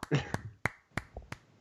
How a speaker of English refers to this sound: Did you hear those claps? Yeah, I did. Those were perfect claps.